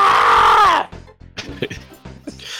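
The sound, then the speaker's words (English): A man imitates someone screaming with one loud, sustained yell lasting under a second, then falls back into quieter, ordinary talking. “And he kind of just holds his face in his hands, just starts screaming.”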